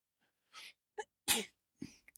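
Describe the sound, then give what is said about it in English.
A person sneezes sharply, with a quick inhale and a few short breathy bursts around the main explosive sneeze; no talking. “Bless you.”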